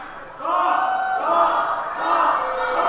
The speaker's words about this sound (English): Everyone's cheering for Hank and not for Doc. Can we get a cheer for Doc?